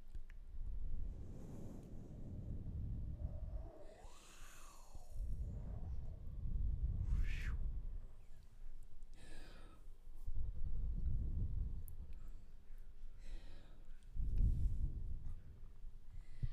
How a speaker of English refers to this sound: We have ocean noises.